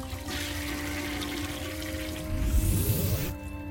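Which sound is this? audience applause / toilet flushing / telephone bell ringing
toilet flushing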